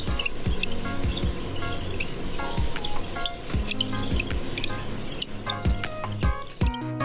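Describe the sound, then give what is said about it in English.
Greenhouse frogs give short, high-pitched chirps that repeat irregularly and sometimes overlap, over a steady shrill drone of insects. No one speaks. “The call of the greenhouse frog is a high-pitched chirp.”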